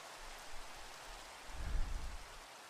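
Steady, hissing rainfall fills the whole stretch, and about halfway through a deep, low rumble of thunder swells, peaks and fades beneath it. No voices are present.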